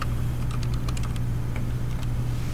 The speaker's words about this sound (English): I missed that typing.